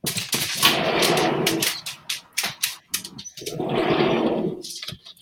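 A dog makes noise: sharp clicks and scuffles broken by two longer, harsh rasping bursts, with no talking over it.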